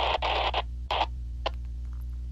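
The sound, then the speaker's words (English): A radio, its antenna touched to the antenna of an 8 tones radio so energy transfers from one radio to the other, gives off several short, loud bursts of crackling static over a steady low electrical hum, with a few fainter blips toward the end and no talking. “And the energy was transferred from the 8 tones radio to the other radio.”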